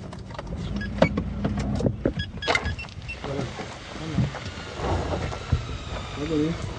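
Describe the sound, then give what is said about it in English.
A truck's engine rumbles steadily as it drives and pulls up at a construction site on a hill about 9 miles southeast of Jerusalem, rolling to a stop with rattles, clunks and mechanical whirs, and faint muffled voices near the end. “We pull up to a construction site on a hill about 9 miles southeast of Jerusalem, with some men doing work on a bunch of new houses.”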